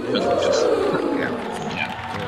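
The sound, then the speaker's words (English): A crowd cheers in a steady, dense roar of many voices blended together, holding at a constant loud level for a couple of seconds without any single clear speaker. “And the crowd loves it.”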